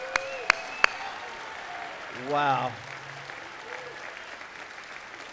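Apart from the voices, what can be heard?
audience applause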